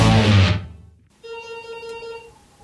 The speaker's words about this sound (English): Someone's telephone is ringing.